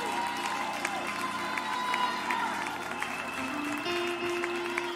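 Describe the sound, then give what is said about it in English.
A church audience at a revival service with baptisms claps and cheers in praise to God continuously, a dense, steady wash of hand claps with voices shouting over it, sustained at an even, fairly loud level throughout. “Let's clap our hands one more time and give God great praise.”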